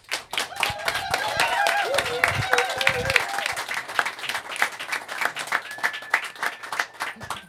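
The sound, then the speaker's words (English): A studio audience at 98.9 WCLZ's Studio Z applauds steadily to welcome a band, with dense, rapid hand claps sustained throughout, plus scattered cheers and whoops rising above the clapping. “Well, keep clapping, because that's how they know to come out.”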